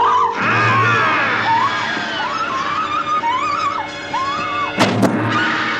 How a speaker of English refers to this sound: and the man behind her slips out a big knife, and at the screaming crescendo of the film, plunges the knife into the back of the girl's theater chair.